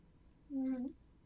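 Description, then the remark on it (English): A single short, drawn-out meow imitated by a human voice, a cat's 'come here' meow, fairly clear, rising slightly then trailing off, with a quiet background tone around it. “So I hear him do the, like, come here meow.”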